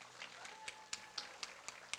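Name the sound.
audience applause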